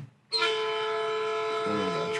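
A loud, sustained whistle-like tone with rich stacked harmonics kicks in abruptly after a brief quiet moment and holds steady, evoking a train horn or whistle sound effect.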